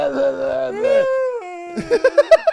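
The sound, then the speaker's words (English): A fairly loud human voice imitates a whale call with long, wavering moans that glide in pitch, then breaks into a quick run of short, rhythmic voiced bursts. “You sounded like a fucking whale. Like Dory from Finding Nemo.”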